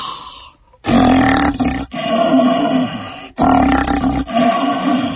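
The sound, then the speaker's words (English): A person imitates a lion's roar through an empty paper towel roll, with a snort and a hiss: loud, rough, resonant bursts, repeated in three long surges with brief gaps, and no speech. “Let's get ready for Lion King with the roar challenge. Empty paper towel roll, a snort, and a hiss.”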